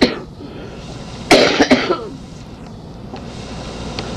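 A short burst of coughing, two or three quick hacks, standing out against a steady low rumble of background noise.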